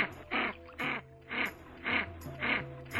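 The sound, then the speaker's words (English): A canvasback duck (Aethia vallisneria), called the King of Ducks, gives a steady series of about six harsh, raspy calls, evenly spaced, with a low droning hum running underneath. “Aethia vallisneria is today's Talkin' Birds featured feathered friend, the elegant King of Ducks, the canvasback.”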